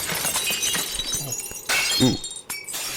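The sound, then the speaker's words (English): Loud glass shattering and breaking, with sharp crashes and scattered tinkling shards over a few seconds, including a sudden burst partway through. “Ooh. Yeah, that's a lot of glass.”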